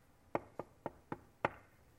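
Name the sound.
knock on a door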